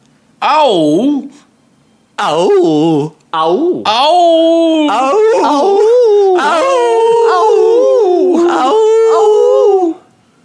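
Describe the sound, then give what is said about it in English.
A dog named Tiny howls, starting with two short wavering yowls before breaking into a long, loud, sustained howl that rises and falls in pitch for several seconds. “Tiny, you're howling to me.”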